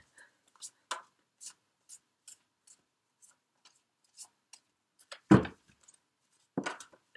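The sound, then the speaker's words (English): A deck of tarot cards being shuffled: scattered soft flicks and snaps at an irregular pace, then a couple of heavier slaps as the cards are knocked together near the end. “That was a funny shuffle.”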